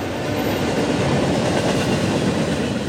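A slow freight train travels steadily past on the rails through the valley in California, a loud, continuous rumble with faint clattering of wheels, unbroken for the whole stretch, with no voices.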